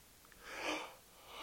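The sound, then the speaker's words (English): A single drawn-out yawn, a soft breathy rush of air that swells and then fades over about a second, with no one talking. “Excuse me, yawning, probably because it's hot. I'm leaving it in there though.”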